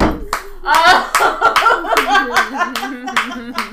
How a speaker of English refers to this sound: Church clap.